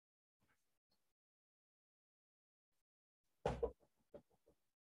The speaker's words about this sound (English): A knock.